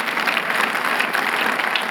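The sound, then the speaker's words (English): A church audience applauds steadily, a dense, even wash of many hands clapping at once with no pauses, holding a constant loud level throughout without voices breaking through. “And we've seen so, you can clap for that.”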